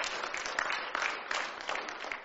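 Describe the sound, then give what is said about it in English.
A crowd claps together for Jesus in a steady, dense wash of applause that holds at an even level for the whole stretch, with no voices standing out above it. “Let's clap for Jesus.”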